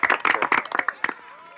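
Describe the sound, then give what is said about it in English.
A burst of enthusiastic crowd applause with dense overlapping claps and some cheering voices, lively, tapering off toward the end of the short clip. “And the crowd is really enthusiastic.”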